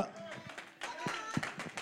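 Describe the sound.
A few people clap in a thin, scattered way, with irregular sharp claps rather than a full round of applause, over a background of murmuring voices.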